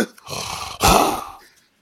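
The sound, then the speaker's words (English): A person growls into a cardboard paper towel tube, making a hollow, resonant roar like a lion. Two quick bursts swell into one loud, rumbling growl that fades away within about a second. “Anyways, that was the little paper towel thing where all you have to do is growl into it and then it sounds like a lion, I guess.”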